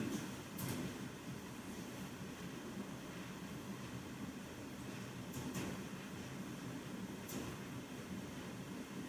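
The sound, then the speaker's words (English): The elevated 7 subway train in Queens, New York, rumbles by, a loud, steady roar of wheels and motor broken by a few sharp metallic clanks, with no one speaking. “I preach against the 7 train in Queens, New York.”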